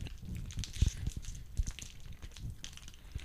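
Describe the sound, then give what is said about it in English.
Several people chewing pound cake snacks with coconut cream, with soft, irregular mouth smacks and low thumps at an uneven rhythm. The chewing is fairly quiet and no one speaks. “Moment of silence. Well, we all chew.”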